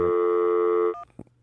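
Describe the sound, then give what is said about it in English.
A loud, steady electronic phone tone holds for almost a second, then cuts off into a few short, quieter beeps and clicks like keys being pressed on a landline telephone as a caller redials. “Oh, my God, he's redialing it.”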